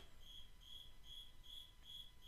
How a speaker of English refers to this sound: The cricket's killing me. I mean, the cricket is fucking nonstop.